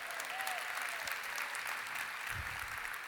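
An audience claps steadily throughout, a dense wash of many hands with no pauses, holding a fairly even level across the whole stretch, with a brief low thump near the end.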